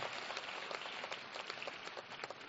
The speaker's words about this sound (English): Let's clap for the parents.